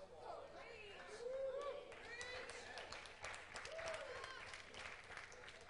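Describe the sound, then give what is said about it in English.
A crowd claps and cheers steadily for several seconds, a dense wash of applause with raised voices and whoops rising over it, everyone reacting together. “The possibility of some of, and hear me, the possibility of some of those claps and cheers that just happened right now could have been stirred by pride.”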